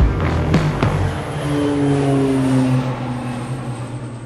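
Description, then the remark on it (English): An aeroplane roars past at the Avalon Air Show in Victoria, Australia, its loud engine drone holding steady while the pitch gradually sinks as it passes. A couple of sharp clicks come early on, and no one speaks. “The Air Show is a sort of festival of gun running and fast aeroplanes, and there's international air chiefs and industry representatives from across the world.”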